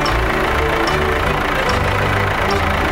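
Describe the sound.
A voice imitates a tractor engine as part of a sung farming song's chorus, making a loud, steady, low chugging rumble that carries on for about three seconds, with faint clicks at intervals and no other talk.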